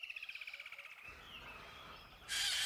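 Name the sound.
caged birds chirping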